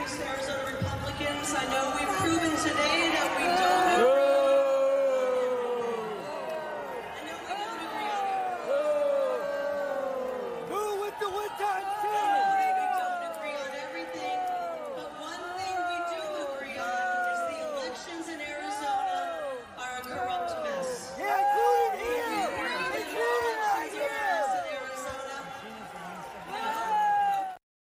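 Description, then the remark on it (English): A large crowd of Republicans at a party meeting boos and heckles Kari Lake loudly and continuously, many voices overlapping in drawn-out jeers and shouts that swell and dip for nearly half a minute. “Very clear boos there. Some excellent boos, I would say.”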